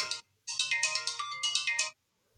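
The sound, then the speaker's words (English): A phone ringtone, a piece of music composed by the phone's owner, plays a bright, electronic melody: one short note, a brief pause, then a quick run of chiming notes that stops abruptly. No one speaks. “He's doing another performance for us. It's actually a piece of mine. It's my ringtone.”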